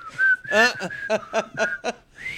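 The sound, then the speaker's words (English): Someone whistles a bright, steady melody, the opening TV theme of the Andy Griffith Show, held notes sliding between pitches, while short rhythmic bursts of voice chime in over the middle of the tune. “I just like the beginning because I can't whistle.”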